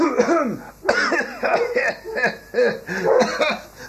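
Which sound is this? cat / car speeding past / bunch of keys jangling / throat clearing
throat clearing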